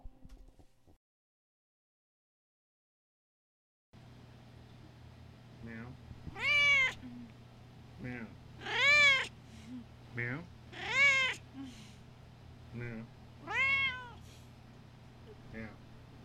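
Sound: cat meowing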